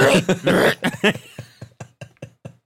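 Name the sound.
coughing fit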